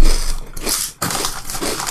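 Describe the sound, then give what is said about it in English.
Loud, crackly crunching of Kettle Brand bacon and maple syrup flavored potato chips being chewed, two dense bursts of bright, brittle crackle split by a brief pause, with no talking. “They're bacon and maple syrup and flavored chips.”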